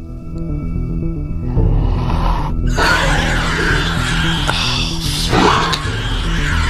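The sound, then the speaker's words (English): Screams in the distance, thin and wavering, rising out of a steady low drone that thickens into a dense, noisy wash after the first few seconds. “And screams. In the distance.”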